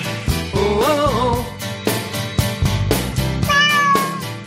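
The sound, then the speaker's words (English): Loud, drawn-out cat meows with rising and falling pitch, two or three calls spaced across a few seconds over a busy, rhythmic musical backing. “I didn't warn you again for the cat meows.”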